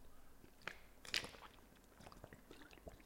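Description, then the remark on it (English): Someone takes a sip of water: soft wet mouth and swallowing noises with a couple of sharp clicks, quiet overall, with no talking. “Let me get a sip of water.”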